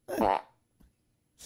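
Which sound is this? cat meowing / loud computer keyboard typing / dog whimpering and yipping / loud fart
loud fart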